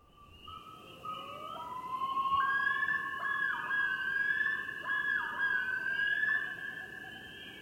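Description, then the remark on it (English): A male common loon's yodel call: loud, rising, wailing tones that repeat in long, warbling phrases over a steady low background hiss, with no talking. “The yodel, though, this one is used exclusively by males.”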